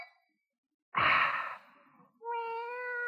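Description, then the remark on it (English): A breathy, sigh-like burst, then after a short pause a cat lets out a drawn-out, steady meow, fairly loud, with no talking. “Oh, what's the matter, Freddy? Oh. Cat?”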